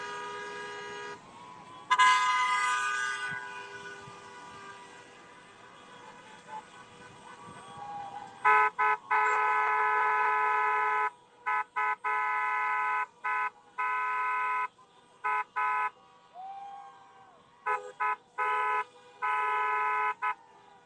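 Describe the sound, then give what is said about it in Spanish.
A car caravan of more than 4,000 cars pulls out of a park amid near-constant honking, with long sustained horn blasts and clusters of short repeated toots from several vehicles at once, loud, over a low traffic rumble. “Ahí está saliendo toda la caravana en este momento.”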